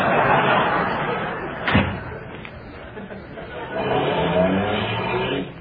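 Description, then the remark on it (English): A single sharp car door slam rings out, followed by a car engine turning over and running steadily, with faint background murmuring throughout. “Can't this car go any faster?”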